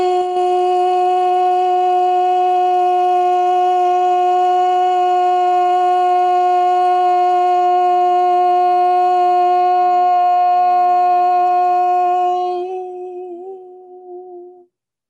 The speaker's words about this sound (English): Breathing into the center. Here we chant A. A.